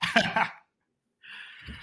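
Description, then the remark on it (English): A female dog gives one short, loud bark, followed by a brief silence and then some softer, rough breathy noise. “And I think your dog agrees with me.”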